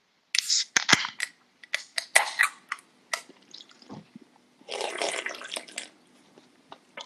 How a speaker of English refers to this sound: So let's go ahead and raise our cans. We'll crack them open and give a cheers.